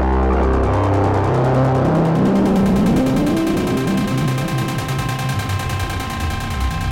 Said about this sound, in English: I've got the stuff on the cursus. Really shape that background drone. And then if I want, I can up the center.